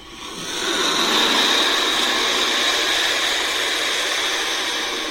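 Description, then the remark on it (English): A baby turkey vulture lets out a harsh, raspy hiss that swells in after half a second and holds steady and loud for about five seconds, with no voices around it. “Okay, our bird is pretty creepy looking and horrible sounding, like this.”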